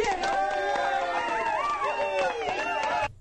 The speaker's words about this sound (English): So he's got we need a crowd to yell for that one. The needle of love.